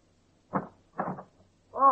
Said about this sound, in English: The second comes at exactly 9:25, when you're back in the basement knocking on the janitor's door.